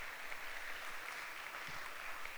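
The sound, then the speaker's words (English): A church audience claps steadily for the community members who stepped up, a dense wash of many hands with no breaks or individual beats standing out, holding at an even, moderate level throughout. “Now that we've applauded ourselves, this sermon's on humility, so I'm going to go ahead and proceed.”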